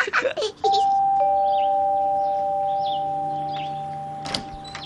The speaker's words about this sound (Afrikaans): Kom, kom ons druk die voordeur klokkie.